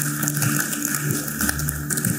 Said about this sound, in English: Give them a huge hand clap.